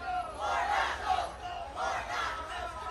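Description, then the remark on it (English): A crowd of Warnock supporters holding up signs shouts and chants together outdoors on a street outside a debate venue in Savannah, Georgia. The voices swell in two loud waves over a steady background roar, with no single speaker standing out. “On one side of the street were Warnock supporters holding up signs and shouting.”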